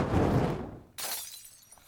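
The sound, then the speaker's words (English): A low, rushing whoosh builds for a moment, then the glass bottle of a Molotov cocktail smashes in a sudden bright crash, its glittering high fragments scattering and fading out over the next second. “This Molotov cocktail is brought to you by communism!”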